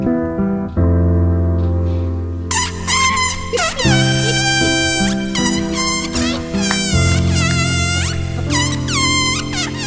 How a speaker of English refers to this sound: So someone decided to take that song, and what would it sound like if you took the helium out of a balloon and tried to sing along with the song?